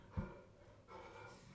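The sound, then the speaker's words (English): A dog lets out a short, muffled bark at a trash truck in front of the house, then whines faintly over a steady low rumble of background noise. No one speaks. “We have a trash truck that showed up in front of our house. It shows up every week, but every week it shocks the dog.”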